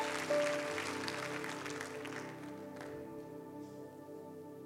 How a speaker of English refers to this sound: Would you give God a hand clap of praise, and you can be seated.